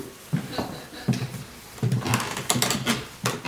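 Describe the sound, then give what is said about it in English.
Wooden floorboards creak and knock under irregular footsteps in a museum exhibition gallery, a series of low groaning thuds with sharper clicks, moderately loud, with no voices. “You can hear all the creaky floorboards.”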